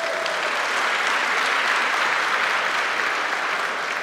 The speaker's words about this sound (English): Are you glad to be in the house of the Lord today? Can we get a hand clap of praise? Let's do that.